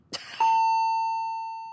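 A ship's general emergency alarm sounds one loud, steady, long blast lasting over a second during a crew drill, preceded by a brief click, with no voices.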